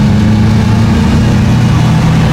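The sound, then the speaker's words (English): A car engine runs steadily on a rolling road that lets the car be driven in static mode, put through its paces in all gears while thrust and braking power are automatically measured; a loud continuous low hum with a constant droning pitch, with no voices. “the car is driven onto a rolling road, a room which enables the car to be driven in the static mode.”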